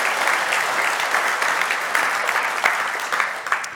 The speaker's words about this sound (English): And I know that you have been blessed also by their ministry and by everything. So can we just give them a round of applause? Like, just come on.